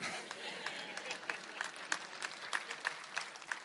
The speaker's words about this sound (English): Unlike spattering applause.